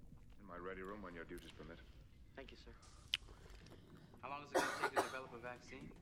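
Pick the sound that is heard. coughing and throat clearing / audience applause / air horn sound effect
coughing and throat clearing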